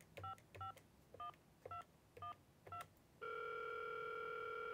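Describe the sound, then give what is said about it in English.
A quick series of touch-tone beeps as digits are keyed on a phone, six short dual-pitched tones in rapid rhythm, followed by a steady continuous tone that holds to the end. “So let's dial in a number.”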